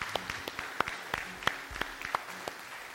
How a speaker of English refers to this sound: I want you to know every one of them are not excited to be standing on the platform to be applauded like this. That's not who they are.